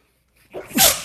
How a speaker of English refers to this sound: Bless you. Thank you.